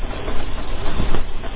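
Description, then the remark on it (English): An assisted bicycle riding downhill along a road: a steady, loud rolling rumble and whir of tyres, with a few faint clicks and no voices. “You might be able to hear the bike going along.”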